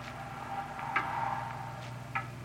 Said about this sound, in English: It's a loud clock, ain't it?